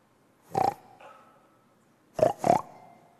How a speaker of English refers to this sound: I hear a pig. Do you? I can't believe it.